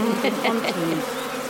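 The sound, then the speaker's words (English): A dense, steady swarm of honeybees buzzing around an open hive and about a person, a continuous droning hum with overlapping wingbeats that waver in pitch as individual bees pass. “It's making me quite hot with the bees buzzing about me.”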